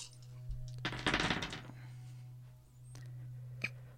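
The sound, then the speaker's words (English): A burst of a handful of dice clattering and rattling across a hard table for about half a second, dense overlapping clicks, then a few scattered ticks as they settle, over a steady low hum. “That is a handful of dice.”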